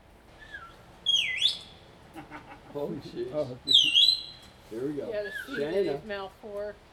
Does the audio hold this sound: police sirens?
no